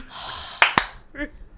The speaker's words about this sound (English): Slow clap.